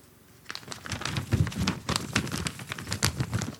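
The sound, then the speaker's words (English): A paper from Blue the intern dog rustles and crinkles, a steady run of irregular crackling bursts lasting a few seconds after a brief quiet start, with no voices. “I got a paper here from Blue the intern dog.”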